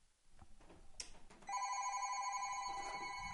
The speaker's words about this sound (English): Someone trying to call my home phone during this show. Yes, I still have a home phone. Yes, I do. And I forgot to turn off the ringer.